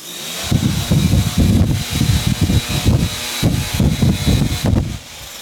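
A leaf blower roars with a steady high-pitched whine, its rushing air surging in rapid, uneven bursts roughly twice a second before easing off at the end, as it is blown all over a boy.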